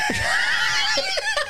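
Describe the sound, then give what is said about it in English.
A Wilhelm scream stock sound effect: one loud, high-pitched, sustained yell heard alone, holding for over a second before breaking into a few wavering, gasping bursts at the end. “We get the Wilhelm scream.”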